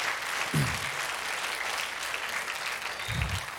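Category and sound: crowd, audience applause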